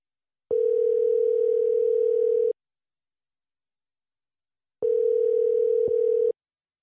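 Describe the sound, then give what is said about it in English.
A phone ringback tone on a recorded call to a friend sounds twice, each a steady electronic buzz lasting about two seconds, separated by a long silent pause, clear with no voices. “Is it okay if I play for you guys my phone call with Micky?”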